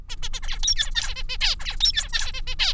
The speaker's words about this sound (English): In case you're a birdsong aficionado, here's an example of a preferred male song.